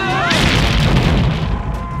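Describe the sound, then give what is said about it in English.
A loud cinematic film explosion of a helicopter hit by an exploding arrow: a heavy boom that swells into a dense, rumbling roar of debris lasting about two seconds, with a brief wavering high-pitched cry cutting through at the start. “Rambo shoots down a helicopter with an arrow. Does the exploding arrow. That is true, yes. But when he does this, listen to the explosion sound.”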